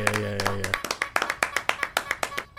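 A quick run of a dozen or so sharp, crisp hand claps in a steady, slightly uneven rhythm, with a low droning hum underneath the first few before it cuts out.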